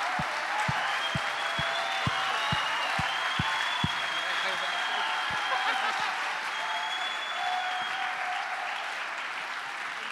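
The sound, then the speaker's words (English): A standing church audience claps and applauds steadily for about ten seconds as a clap offering for a visiting preacher, a dense wash of hand claps with a few sharp rhythmic claps near the start and voices cheering faintly in the mix. “Come on, let's stand and give him a clap offering.”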